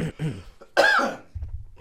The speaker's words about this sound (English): If you're going to cough, please leave the room.